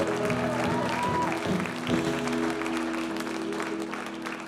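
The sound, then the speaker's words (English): A church audience applauds as a praise to Jesus in a dense, steady wash of clapping that lasts throughout, with held organ-like musical tones sounding underneath. “And if you receive that, would you put your hands together and give Jesus a praise this morning?”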